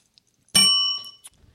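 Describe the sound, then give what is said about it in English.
A single muted segment-transition bell ding strikes sharply, rings briefly with a thin metallic tone, and fades out in well under a second, heard on its own with no talking. “That was a muted that segment was the bell. Worst. The worst segment bell ever.”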